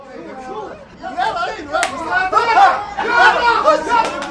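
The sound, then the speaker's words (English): A crowd of Egyptian soccer fans sitting in front of two TVs at a sidewalk cafe, cheering their team on to victory; many overlapping voices chatter and rise into excited cheers, with a sharp clap or slap cutting through the steady babble. “Egyptian soccer fans sit in front of two TVs at a sidewalk cafe and cheer their team on to victory.”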